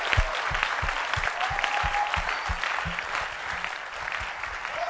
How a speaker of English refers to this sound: Hallelujah. Are you giving the Lord a wonderful clap offering?